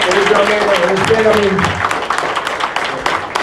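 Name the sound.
audience applause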